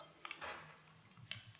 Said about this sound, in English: Okay, will you add a couple of drops of green to your glass of fresh water and give it a stir?